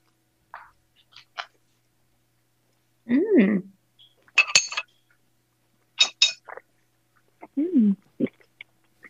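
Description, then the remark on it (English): Eating sounds of microwaved food: short wet slurps and brief clinks of utensils in separate bursts, with a couple of appreciative hummed murmurs between them and quiet pauses. “do you mind if we slurp a little bit? Are you okay with a little ASMR on this?”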